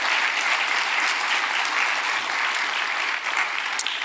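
An audience claps for the Lord during a church service, a dense wash of many hands striking at once, loud and sustained for several seconds with no clear rhythm and no talking over it.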